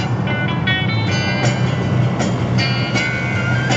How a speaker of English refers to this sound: Bloody lorry. Piss off.